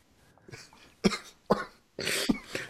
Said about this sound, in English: Don't make me laugh. It really triggers my cough right now. Oh, it really sends me down like a deep cough right now.